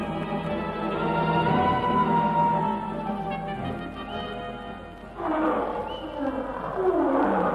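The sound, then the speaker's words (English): A lion roars in deep, drawn-out bellows, loud and continuous, with a second surge of growling near the end, somewhere ahead but not close; no voices are heard. “It was a lion, wasn't it?”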